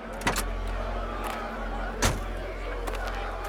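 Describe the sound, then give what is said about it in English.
A car door unlatches with a sharp click as a woman steps out of the car, then a second clunk follows about two seconds later, over a steady low idling rumble inside the vehicle. Nobody speaks. “Alma stepped out of the car, unsteady on her feet.”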